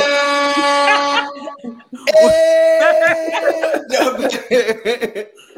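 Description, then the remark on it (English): Two loud, sustained blasts of an air horn sound effect, played to celebrate a dream being actualized, the second starting right after a brief gap, followed by people laughing and talking. “Every time a dream is actualized, you'll get the air horn.”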